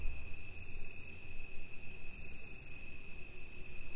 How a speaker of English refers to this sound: I am currently sitting in a gazebo in Georgia behind my childhood home, listening to the crickets, and taking it easy and relaxing after what has been a very difficult year. You should take a breath, too, and listen to the crickets.